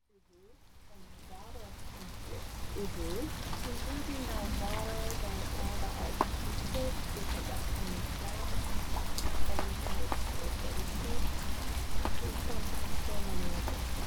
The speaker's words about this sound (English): So to end this episode, here is an excerpt from that second day with the rain falling in the Teshima Art Museum.